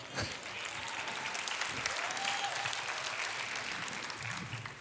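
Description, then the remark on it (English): An audience at a church sermon claps together, a dense, steady wash of applause that stays loud and continuous for several seconds without pause. “You can clap.”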